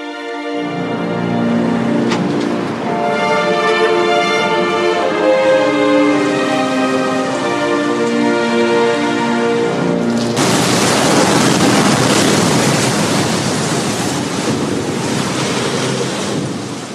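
Sustained, droning music plays for about ten seconds, then gives way to a loud, steady roar of storm noise, like crashing waves and rushing wind, that continues to the end.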